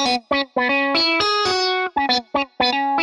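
A short keyboard part in the right stereo channel of a song's chorus: bright, buzzy notes with a chorus-like sheen, about ten notes in a choppy rhythm, some clipped and a few held longer, played alone without voices.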